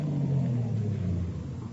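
An imported car's engine rumbles steadily as it drives up outside a house, a low droning hum that eases off slightly toward the end as the vehicle pulls in. No voices.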